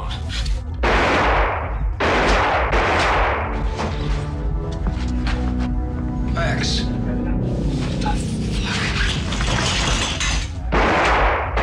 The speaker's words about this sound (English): It's just those three in the boardroom, and then all these people come rushing in because they hear the gunshots, and Max is like, oh, they killed us, they killed us.